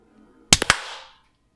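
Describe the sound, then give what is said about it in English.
Three quick, sharp hand claps in a rapid burst, made to sync audio, crisp and loud against near silence, the last one trailing off in a brief ringing decay. No one speaks. “I heard a clap, but it was like a full 2 seconds after me.”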